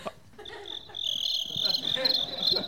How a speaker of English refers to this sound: No, I think it shuts them down because they're like, who's this hot sounding cricket? It's not real.